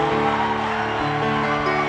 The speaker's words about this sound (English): I think you can clap better than this.